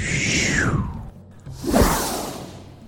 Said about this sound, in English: Whoosh back.